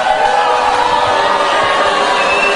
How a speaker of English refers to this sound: In the end, he was the winner. Probably not the reaction he was hoping for when you name a favorite to run for the White House. Mixed applause and boos as Ron Paul was announced over the weekend.